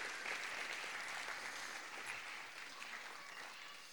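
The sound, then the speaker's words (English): An audience claps steadily, a dense crackle of many hands that stays fairly even and slowly softens over a few seconds, with no voices standing out. “So can we give these guys a big round of applause?”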